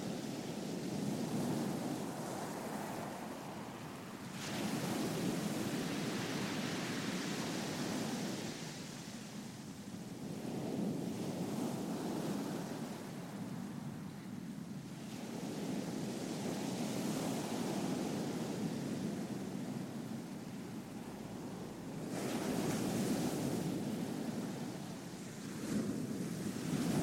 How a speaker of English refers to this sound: Just spend the next 30 seconds picturing everything around you, listening to the ocean sounds, visualizing yourself on this spot.